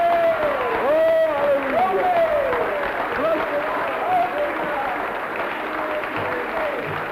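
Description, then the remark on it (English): An audience claps for Jesus in a dense, steady patter of many hands, while high voices whoop and cheer over the applause throughout. “Shall we all give Jesus a hearty clap then?”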